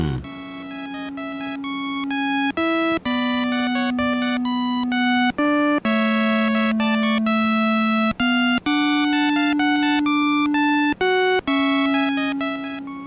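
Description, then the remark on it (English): Loud, bright chiptune music from the video game Black Bass 2 plays alone: buzzy, bleeping electronic tones hop between sustained notes with brief cut-outs, sounding much like an old Nokia mobile phone ringtone. “This almost reminds me of some kind of old ringtone on one of the old Nokia phones.”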